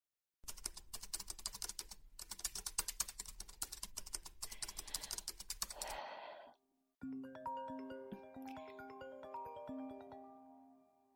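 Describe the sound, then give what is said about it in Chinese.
Rapid clatter of typing on a computer keyboard as someone finishes work documents, for several seconds with a couple of brief pauses, followed by a short whoosh and a melodic phone ringtone of an incoming call. “我还有点文件没做完，正好做完它。”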